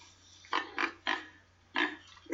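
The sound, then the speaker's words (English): A pig in a house grunts in short, snorty bursts, about five of them in an uneven rhythm with brief pauses between. The grunts are fairly loud, and nobody speaks. “You cannot keep a pig in this house.”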